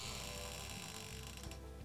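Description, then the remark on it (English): A door creaks slowly and steadily, a quiet, drawn-out groan with a faint mechanical grinding texture and no voices. “Oh, that's an interesting sound. Did you leave the door open? Maybe it's that door of the oven.”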